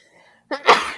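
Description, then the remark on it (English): A single sneeze: a quick sharp intake followed by a loud, breathy burst that trails off, preceded by near silence. “Bless you.”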